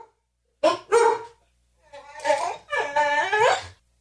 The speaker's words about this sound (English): Wow, it's a really noisy dog.